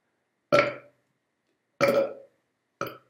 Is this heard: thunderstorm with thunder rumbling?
no